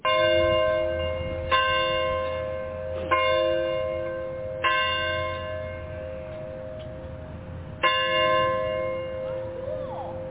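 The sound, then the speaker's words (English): A church bell tolls in slow, repeated strikes, each ringing out with rich overtones that hang and fade before the next. It sounds loud and clear, with no voices present. “So for 2 days, I was listening to this bell, the church bell, ready for the wedding.”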